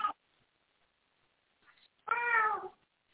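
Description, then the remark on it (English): A cat lets out one clear, drawn-out meow, its pitch sliding downward at the end, after a moment of near silence. No one speaks. “We got little kitties going on.”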